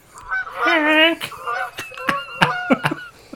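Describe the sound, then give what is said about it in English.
A goose lets out a loud, drawn-out nasal honk, followed by a scatter of shorter, sharper honks and clucks, fairly prominent. “Like, I don't want to live with the geese anymore.”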